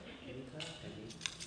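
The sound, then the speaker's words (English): Cutco kitchen scissors being handled, with two quiet, sharp metallic snips or clicks about half a second apart over a soft, low background murmur. “Scissors. These are probably my favorite thing that I got from Cutco.”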